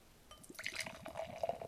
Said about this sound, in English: Oh, it's a good pour as well.